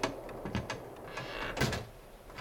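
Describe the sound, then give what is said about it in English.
The front door of an old house suddenly blows open in the wind, banging and rattling, with a few sharp knocks and clatters scattered over a steady, breathy rush of wind. “he got quite the fright when the front door suddenly blew open in the wind.”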